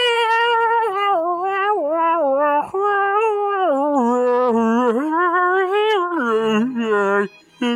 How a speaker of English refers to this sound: I can play the harmonica really pretty cool. Good. Not bad though. You got the harmonica on you? Oh yeah, I keep it in my breast pocket right here. It's little. Let me hear a ditty, dog. Let me hear what you got.